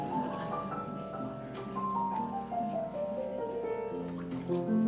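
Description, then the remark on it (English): During a ceremony, water representing a new home in Hayward is poured steadily into a container for several seconds, a continuous trickling with a shifting hollow, ringing tone, moderately quiet, with faint murmur behind it. “This water represents our new home.”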